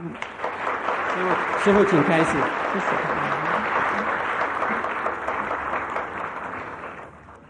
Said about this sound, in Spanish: Señoras y señores, vamos a escuchar el bellísimo mensaje de la gran maestra suprema. Un aplauso para la gran maestra.